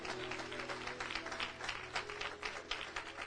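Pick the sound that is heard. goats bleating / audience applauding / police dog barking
audience applauding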